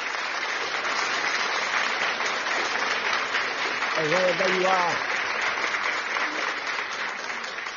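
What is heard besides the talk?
audience clapping hands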